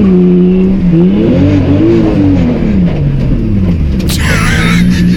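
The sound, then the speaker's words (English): A car engine revs loudly and steadily, its pitch rising and falling through several surges, with a brief high whine cutting in near the end. “I'm scared of this car. What a stupid car.”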